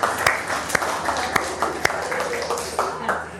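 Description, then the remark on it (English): A crowd breaks into steady applause for the creche and kids workers, a dense wash of many hands clapping at once, with a few sharper individual claps standing out and faint voices mixed in. “Round of applause for our creche and kids workers.”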